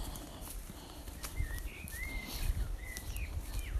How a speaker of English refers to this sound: Now, what do you reckon that bird is that you can hear? Blackbird, probably. Yeah, I think it's a blackbird too. Blackbirds have a song which is quite changeable and quite sort of erratic, almost.